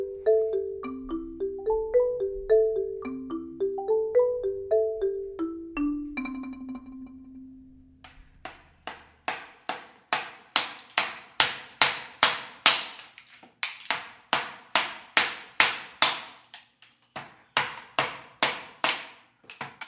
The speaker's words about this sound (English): So what's that sound? That is the sound of artist Thaddeus Mosley's sculpting. What you are hearing is Thad hammering a chisel into a big block of wood, and there are shards of wood falling into an accumulating pile at his feet.